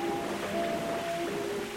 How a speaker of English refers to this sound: It's raining. You might recognize this rain. It's the same exact rain that fell in 1973.